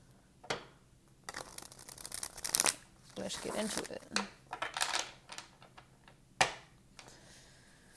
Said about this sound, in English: All right. Shuffling the Rider-Waite Tarot.